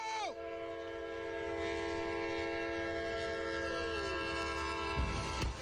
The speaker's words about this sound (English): Anyway, a truck driver narrowly avoids getting pummeled by her own truck as a train runs into it. You ready for this? Here we go.